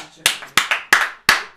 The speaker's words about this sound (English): Monkey clap.